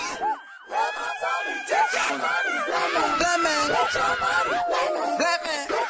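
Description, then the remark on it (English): Overlapping vocal cries, whoops and screams rise and fall throughout, layered into a dense musical texture with bits of laughter, staying steadily loud for the whole stretch. “You know, these sort of cries and screams and laughter.”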